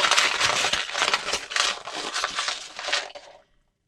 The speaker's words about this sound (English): Crinkle up your paper.